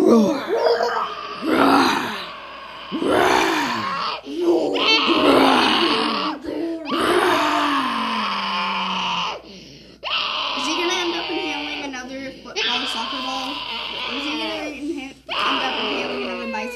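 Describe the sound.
While a book is being read, a child lets out a series of loud, drawn-out roars imitating a dinosaur, roaring to be allowed to turn the page, each burst wavering and gliding in pitch, with short pauses between them.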